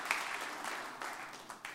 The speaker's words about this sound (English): Give the Lord a good hand clap of praise as you're being seated this morning.